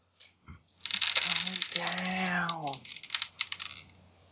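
Fourteen dice are rolled for an attack, clattering and rattling in a quick burst of sharp clicks that taper into scattered taps, while a voice makes a drawn-out vocal sound over the middle of the rolling.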